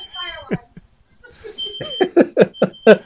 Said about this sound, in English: There's something beeping over here.